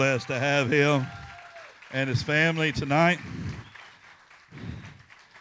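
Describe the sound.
A man speaks over a room, and as his voice drops away a crowd's applause rises, a steady wash of clapping that carries on at moderate volume to the end.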